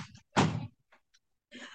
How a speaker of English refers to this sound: You guys, give me just 1 second. My nephew is knocking at my door.